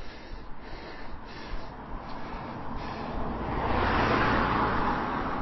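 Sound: car passing by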